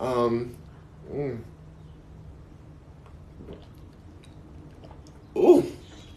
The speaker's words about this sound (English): But let me get a little sip and let's get started in this.